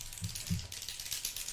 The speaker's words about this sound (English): Now, what if I just start clicking this pen really loudly? I just think, let's have a click.